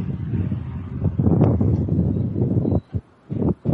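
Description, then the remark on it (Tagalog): An electric fan blows a steady, low whooshing rush of air with a soft rumble, briefly cutting out twice near the end before resuming. No one speaks. “Kasama naming naririnig yung electric fan.”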